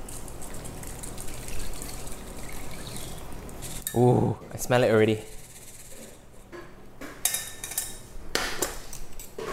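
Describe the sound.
A steady, gentle crackling hiss of hot oil poured over chili flakes in a heat-proof bowl sizzles throughout, fairly soft, with a brief spoken remark partway through.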